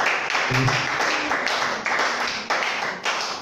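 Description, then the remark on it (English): An audience claps their hands together for a visiting minister in a steady, dense wash of applause that fills the room, with a brief voice cutting through near the start. “And I want you to clap your hands for this brother.”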